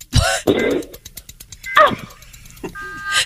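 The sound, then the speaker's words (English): In a game, a person responding to a challenge to give three distinct fart noises within 5 seconds imitates three different fart noises one after another: a long, loud buzzing raspberry, then a short squeaky burst, and finally a brief tonal toot, with pauses between them. “Give me three different, distinct fart noises.”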